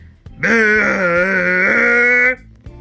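A single long, loud burp held for about two seconds, with a steady, tuneful pitch that wavers slightly like a sung note, alone with no talking.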